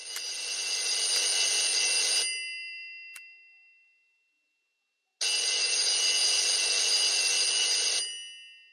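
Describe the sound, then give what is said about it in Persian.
An old-fashioned telephone bell rings loudly for an incoming call in two long bursts of about two seconds each, separated by a pause of silence, with no voices. “عرشی تلفن کرد و مدتی صحبت کردیم.”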